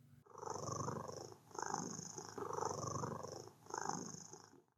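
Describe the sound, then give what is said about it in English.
A brown-furred creature in a tank purrs steadily as it is petted by hand, a low rumbling vibration swelling and easing in about four slow, even breath cycles, with no other sounds around it. “It was purring.”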